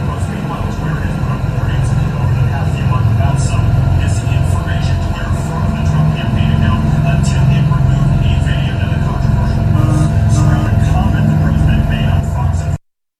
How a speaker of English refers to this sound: So that's right outside my window, guys. So it's the four helicopters coming in, taking care of everything because the president's going to be landing soon.